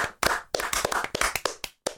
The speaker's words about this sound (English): Yay. And a round of applause.